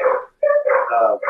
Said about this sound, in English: Is that a police dog or another dog? I think it's probably like a neighbor's dog or something. Okay. I don't think they'd bring a police dog for this kind of call, but maybe.